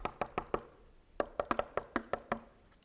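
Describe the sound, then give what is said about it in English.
Knocking on a house's side door: a quick series of four raps, a short pause, then a longer burst of about eight sharper knocks, fairly loud with no voices. “I'm knocking on the side door.”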